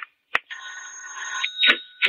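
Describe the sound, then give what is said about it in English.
A doorbell rings with a steady, bright buzzing tone lasting about a second, bracketed by a few sharp clacks before and after. No one speaks. “Then I heard the bell.”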